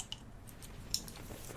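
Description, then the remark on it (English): A can of Kolsch style ale beer (4.8% ABV) being cracked open: a small click, then a sharper snap with a soft fizzy hiss trailing off. Quiet, with no voices. “And I'm going to pop my tap. Oh, my top.”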